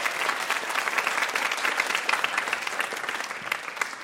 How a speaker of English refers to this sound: Big round of applause for our VIP, Julie Klausner, everybody.